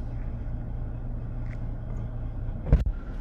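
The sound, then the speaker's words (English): Steady low engine rumble and road noise from inside a moving car on a quick little drive, with a brief thump or bump near the end. “So this is us taking a quick little drive.”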